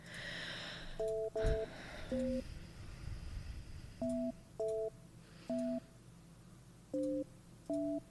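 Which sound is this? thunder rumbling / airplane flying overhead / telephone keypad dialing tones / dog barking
telephone keypad dialing tones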